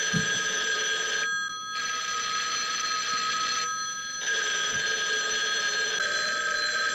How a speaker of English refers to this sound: All these goddamn phones. Turn off the goddamn phone. Why are all the phones ringing? Turn off the goddamn phone. Ah! There is no phone ringing, damn it!